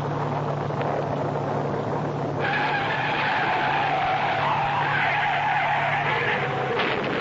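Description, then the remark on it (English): Car tires skid with a loud, sustained screech that starts a couple of seconds in and holds for several seconds over a steady engine rumble, on a highway on the night of October 15th in bad weather, the skid sending the car through the guardrail. No one speaks. “Harry Clark's death from the skid that sent him hurtling through the guardrail”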